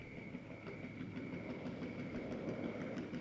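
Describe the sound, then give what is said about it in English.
A truck rumbles past steadily while a flat tire flaps with a quick, repeating slap-slap rhythm over the low engine drone. No one speaks. “But that truck had a flat tire and a half. You could hear it flapping.”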